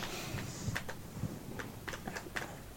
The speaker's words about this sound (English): Uh-oh, so much typing. Yeah, all the typing. It's makes me nervous. It's a really loud keyboard, too. It's like popcorn.